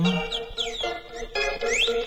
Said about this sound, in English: It's so yeah, there it is. It was a tiny bird.